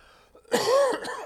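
cough

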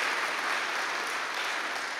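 audience applause

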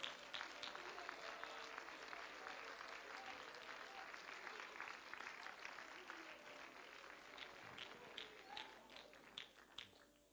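audience clapping hands

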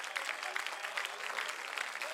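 audience clapping hands

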